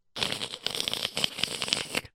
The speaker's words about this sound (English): Get out of here. I'm ripping this up. And I'm going to throw it in that fireplace.